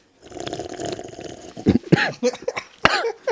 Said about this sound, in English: That was a legitimate cough.